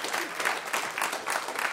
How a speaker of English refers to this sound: you guys can give them a round of applause for coming up here.